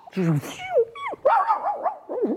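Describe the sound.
A person mimics a dog, starting with a gruff bark-like burst and then sliding into a string of whiny, yipping pitch swoops.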